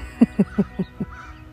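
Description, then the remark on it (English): A bird in the trees gives five short, harsh calls in a quick, even rhythm in the morning, clear, then the sound trails off into a faint, fading note. No one is talking. “I'm listening to all the birds in the trees this morning, happily singing.”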